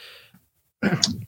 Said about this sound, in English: Bless you.